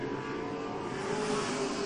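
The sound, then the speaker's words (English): Race car engines roar steadily at speed around the oval at Penticton Speedway as Mark Berrio's No. 27 car goes through turns 3 and 4 and down the front chute: a loud, continuous buzzing drone whose pitch climbs slightly as the cars accelerate, with no voices present. “As there goes the 27 of Mark Berrio through 3 and 4. Down the front chute, Horwath, about half a racetrack at this point behind him.”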